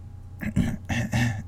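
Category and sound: vocal imitation, imitated throat clearing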